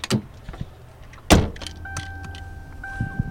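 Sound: getting into a car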